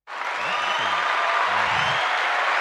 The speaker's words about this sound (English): I had to give. Needed to get the crowd to give you a round of applause. You can't hear it because I've got headphones on.